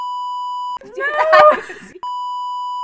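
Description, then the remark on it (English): A steady, high-pitched censor bleep tone sounds, breaks off for a loud shouted voice, then resumes at the same pitch and level until the end. “You have to include that and then just beep it.”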